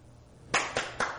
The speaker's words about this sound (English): How do I clap my hands for joy in the Lord?